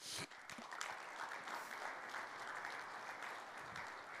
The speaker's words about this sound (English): A lot of golfer claps this morning. Yeah, it's people still waking up, first week, you know.